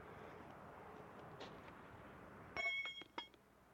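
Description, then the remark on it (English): A railroad spike dropped onto a track gives a sharp, ringing metallic clang, then a second, lighter clink as it bounces, over a steady hiss of background noise. “This is a railroad spike being dropped on a track.”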